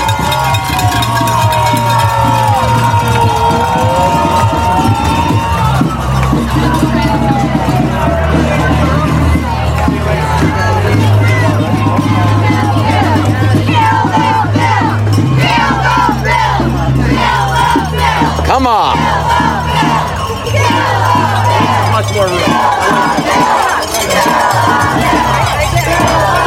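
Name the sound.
crowd cheering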